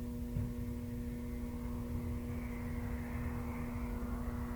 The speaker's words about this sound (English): Cars driving down the street. Yeah, it gets this, like, kind of drowsy, whoosh, like a whirl, like the last sounds I hear before I fall asleep. I can hear the lights, that little droning. And I think that's all I'm hearing, is the cars and that.